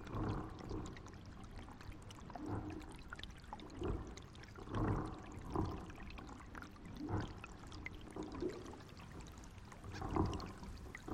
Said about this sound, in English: The underwater sounds that were coming from the lock, you could hear all of these bottles and tires swirling under the water somewhere deep. And you could hear all these bottles tinkling away.